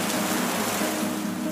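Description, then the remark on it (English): Steady evening rain falls on the pavement of bustling Mexico City streets, a dense, even hiss of countless drops with a faint low hum beneath, continuous with no voices. “The rhythmic sound of raindrops sets a somber tone as they gently strike the pavement.”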